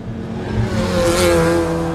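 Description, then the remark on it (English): A professional race car engine roars and revs steadily as a 14-year-old girl drives it around a stadium track, its pitch climbing slightly, loud and continuous with no voices. “But here she is, gripping the steering wheel of a professional race car, zooming around a stadium track.”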